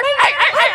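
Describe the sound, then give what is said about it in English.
A person mimics a Chihuahua's bark with a quick run of three or so shrill, strained, high-pitched yaps, with no other talking. “Now Chihuahua big.”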